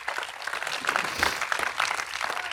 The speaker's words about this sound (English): I wish somebody would clap their hands to the Lord this morning.